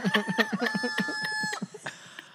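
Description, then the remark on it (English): A rooster lets out one loud, drawn-out crow, with choppy clucking pulses running beneath it and a few scattered clucks trailing off afterward. “will you grab my gun so I can shoot that bird?”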